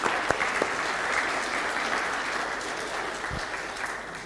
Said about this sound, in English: Would you give them a round of applause just to encourage them?